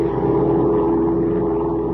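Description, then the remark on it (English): A steady, loud engine drone of a big amphibian plane in flight, flying southward over a wild river and dense jungle in Central America, hums continuously with a strong low rumble and a constant tone, with no voices or breaks. “As our story opens today, Major Dover and Kent are flying southward in a big amphibian plane piloted by Jack Corboy, Dover's pilot.”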